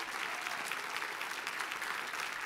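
A church audience applauds steadily, a dense wash of many hands clapping at an even level throughout, with no voices standing out, after hearing the church sponsors over 150 kids in Mazatenango, Guatemala.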